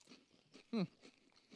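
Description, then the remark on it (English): Crunching of rolled spicy, lime-flavored tortilla chips, several crisp bites and chews spaced through the moment, with a short loud hum-like mouth sound in the middle. “It's actually a really pleasant, that's like crunch.”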